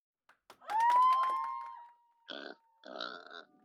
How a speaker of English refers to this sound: Pig.